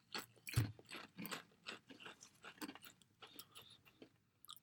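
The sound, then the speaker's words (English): Crunching of crispy Old Dutch Original potato chips being chewed, a steady run of sharp, crackly bites and munches with no talking. “Yes, they're crunchy, they're salty, they're potato-y.”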